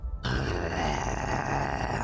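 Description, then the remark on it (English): A person imitates the growl of Inferna Jones, an adolescent hellhound with hackles up, prowling protectively toward another character. It is a low, rumbling, sustained snarl that starts abruptly after a brief silence and holds steady and loud for about two seconds, with no speech. “an Inferna Jones hackles up, is growling, prowling towards Wawa.”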